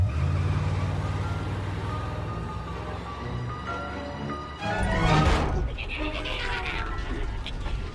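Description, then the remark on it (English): An ice cream truck's engine rumbles steadily while it plays the Alfred Hitchcock Presents theme as a thin melodic tune, then a louder, rougher surge of vehicle noise rises near the middle before settling back into the motor drone. “grab him and take him to Frost via the ice cream truck, which plays the Alfred Hitchcock Presents theme”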